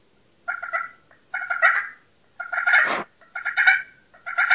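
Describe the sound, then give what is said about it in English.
Turkey sounds worked on a Primos Crystal "The Freak" slate pot-and-peg call: five raspy bursts of yelping, each about half a second, separated by short pauses, with no talking. “This actually, I've had this Primos Crystal, the Freak, and I've probably had, let's say, 50 or 60 other pot calls, and I always kind of go back to this one.”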